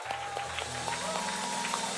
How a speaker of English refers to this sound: So let's give a round of applause to all the fathers.